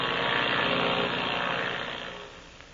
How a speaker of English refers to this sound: Another plane, a powerful bimotored ship, is flying through the black night over that wild country. Ivan Shark is sitting at the controls, and beside him in the co-pilot seat is his chief pilot, Gardo.